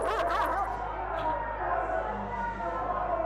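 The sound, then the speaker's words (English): A pack of dogs barks and whimpers in a dense, continuous jumble, fairly loud, with overlapping yips and no clear pauses, as a posse chases someone down with them. “he and his posse chased me down with dogs.”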